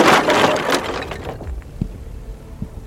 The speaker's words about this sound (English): The monster approached the door to the swimming pool area. It paused, as if it debated whether to knock or not. Deciding on a course of action, it simply placed a hand on the door, causing it to split and then crumble apart.